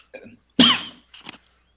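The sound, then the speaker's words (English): A single sneeze: a brief, soft intake of breath, then a sudden loud, breathy burst that fades quickly, followed by a faint sniff. No one speaks. “Bless you.”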